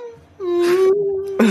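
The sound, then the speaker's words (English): A person imitates a whale call with one long, steady moaning tone held for about a second, slightly rising in pitch, ending in a brief louder breathy burst. “Especially the whale noises.”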